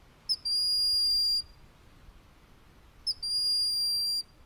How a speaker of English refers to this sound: Out east, we have a bird called a broad-winged hawk, which gives a very simple sort of plaintive whistle that can be heard, you know, as it flies overhead.